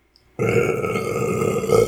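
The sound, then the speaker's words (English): A single long, loud burp erupts after a brief silence, rumbling steadily for about a second and a half with no talking over it. “Was that a setup for a burp joke, or were you going to go somewhere with that?”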